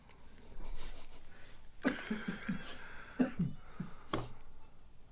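A sneeze fit: three sharp, breathy bursts, each trailing into short voiced sputters, spaced about a second apart and fairly loud against a quiet background hiss.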